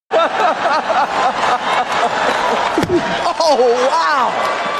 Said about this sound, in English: Oh, wow. And a slap. Will Smith just smacked the shit out of me.